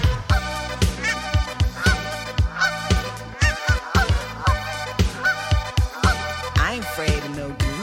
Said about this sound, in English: geese are not on my bird list because I grew up in the Midwest